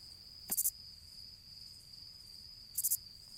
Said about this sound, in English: Someday, there may be an ad here. But for now, just enjoy the soothing sound of these crickets.